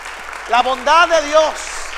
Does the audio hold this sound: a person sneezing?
no